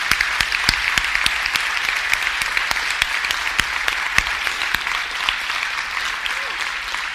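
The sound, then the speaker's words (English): A round of applause from a crowd, many hands clapping in a dense, steady wash with a few sharper individual claps popping out, holding at an even loudness throughout with no talking. “Can we just give them a thank you, a round of applause?”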